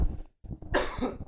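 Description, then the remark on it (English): A person coughs hard and repeatedly after choking on a drink, with a brief gasp between bursts and harsh, wet, spluttering coughs at the end, loud and without any talking. “I tried breathing while drinking.”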